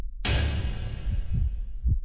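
A heartbeat sound effect in a Voice of America (VOA) TV channel promo: deep, muffled thumps repeating at a steady pace, layered over a sudden broad whoosh that slowly fades, with no voices present.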